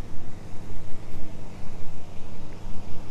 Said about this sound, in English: Let me pass this lawnmower over here.